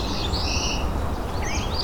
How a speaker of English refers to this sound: It's an oven bird.